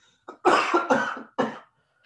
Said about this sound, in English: Sorry. And the cough is just like, I tell you, you're going to scare some fans with that cough, you know. I'm going to tell you about the cough in a minute.